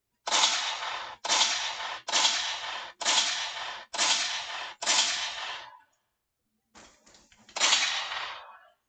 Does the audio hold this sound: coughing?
no